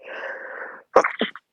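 A single loud sneeze: a drawn-out breathy inhale builds for most of a second, then breaks into a sharp explosive burst with a brief trailing sputter.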